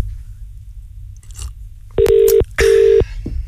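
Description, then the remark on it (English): A telephone ringing tone sounds loud: two steady electronic buzzes in quick succession, with soft rustling before them and no talking, as a phone call goes unanswered. “No one's answering their phone.”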